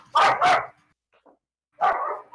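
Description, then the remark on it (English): A dog barks loudly: two quick sharp barks, a short pause with faint noise, then a third bark. No one speaks. “That was loud. Sorry. I have a moody dog.”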